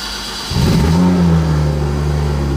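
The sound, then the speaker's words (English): A Porsche GT3 RS sports car engine fires up after a brief quiet moment, surging into a loud rev before dropping back to a steady, rumbling idle. No one speaks. “Okay, so it's a GT3 RS car, which is basically one of the best Porsches ever made.”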